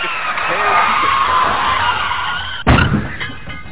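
A long, high tire screech builds for a couple of seconds, then ends in a sudden loud crash with a rattling, clattering tail, like a car skidding into a collision.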